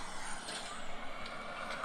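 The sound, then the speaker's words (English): A bus's air brakes hiss as somebody gets off the bus, a steady, fairly loud rush of noise that lasts throughout, with brief surges in the hiss against a low engine rumble. “Somebody's getting off a bus.”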